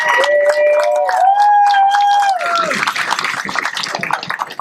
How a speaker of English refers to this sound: And big round of applause for our champion.